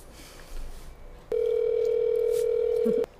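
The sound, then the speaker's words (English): A phone call rings out as it is placed: one steady, mid-pitched electronic tone holds for just under two seconds, starting and stopping abruptly after a moment of faint background hiss. “I'll give her a call really fast.”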